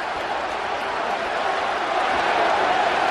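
A huge arena crowd of WWE fans at Ford Field roars in frenzied cheering during the Batista versus Undertaker match, a dense, unbroken wall of voices that stays loud throughout and swells slightly toward the end.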